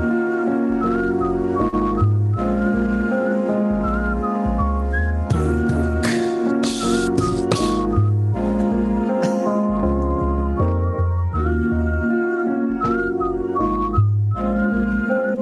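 A whistled melody rides over a steady band backing with bass, drums and chords, the bright whistle tones weaving through a relaxed, looping groove at a consistent, fairly loud level.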